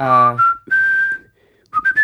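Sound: person whistling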